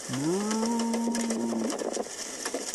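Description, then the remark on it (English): A cow being dragged in a tornado lets out one long, drawn-out moo, loud, lasting over a second and a half and rising at the end, over a steady rushing background noise. “Shocking video of a cow being dragged in a tornado.”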